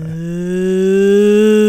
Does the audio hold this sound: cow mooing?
yes